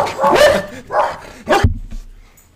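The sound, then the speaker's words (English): Two dogs, Tilly and Arlo, going past the studio bark in a quick run of about three sharp, loud barks, with no one talking, before the sound drops away to a low rumble. “Slight dog barking interlude. Dogs going past the studio, Tilly and Arlo going nuts.”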